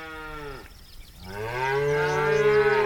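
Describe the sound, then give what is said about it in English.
Two long, low moos from cattle on the rangelands of the American West, the first fading out, then a brief pause before a louder, sustained bellow that swells and holds, clear with no one talking. “Cattle have grazed the ranges of the West for over 150 years.”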